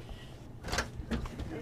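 A couple of muffled knocks on the front door of a couple's home in a quiet Sacramento neighborhood on a Sunday morning, fairly quiet, set against a low, steady background rumble.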